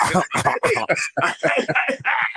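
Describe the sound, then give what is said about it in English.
A voice imitates loud coughing, a rapid string of eight or so harsh, throaty bursts with brief gaps, with no other talk. “Like, coughing. I'm like, yo. So he's coughing.”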